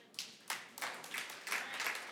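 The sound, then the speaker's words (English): Scattered hand claps started by one audience member, about six or seven in a loose, uneven rhythm, sounding faint, with no talking over them. “Hey, thank you to the person over there that started that little clapping there.”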